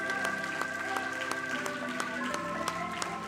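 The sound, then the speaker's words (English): An audience claps hands in a steady rhythm to give thanks for the blood, the sharp beats keeping time over sustained music and voices, loud and continuous throughout. “Come on, clap your hands if you're thankful for the blood.”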